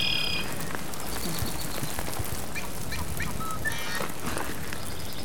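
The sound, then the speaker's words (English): A marsh wren's bubbling, churring song comes in short buzzy bursts, set against a steady chorus of croaking frogs and scattered bird calls, with no talking. “And the one that's kind of making that churring sound like water rushing over a brook is called a marsh wren.”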